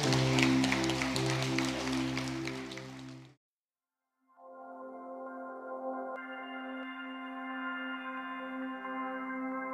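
A church audience claps steadily for a pastor over sustained keyboard chords for about three seconds, then everything drops out briefly before soft organ-like chords continue on their own.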